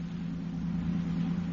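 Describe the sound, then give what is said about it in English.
A steady, low engine hum drones at an even level throughout as a Los Angeles Police Department robbery detail police car cruises at constant speed in downtown Los Angeles, with no talking. “In a police car in downtown Los Angeles, officers Rombo and Stromwell of the robbery detail are cruising.”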